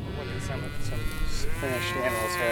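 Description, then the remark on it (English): Several beef cattle moo in overlapping, drawn-out calls, a herd lowing together outdoors on a farm just outside Ghent, New York, steady and continuous with no talking. “This is a basic social cowherd group doing what cows have been designed to do.”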